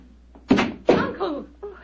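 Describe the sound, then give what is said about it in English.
A door opens with two quick, solid clunks about half a second apart as someone opens it, followed by softer creaking or murmuring sounds. “Someone's opening the door.”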